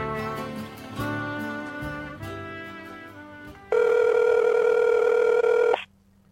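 An outgoing Christmas phone call to Santa ringing on the line: a single loud, steady buzzing ring tone lasting about two seconds, preceded by a few seconds of softer, shifting musical tones. No one speaks.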